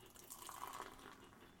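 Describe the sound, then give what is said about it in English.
Doppelbock beer pours steadily into several tiki cups from IKEA for a tasting, a continuous fizzy splashing stream of liquid that fills the short moment on its own, fairly soft, with no voices. “We're going to have multiple pours here.”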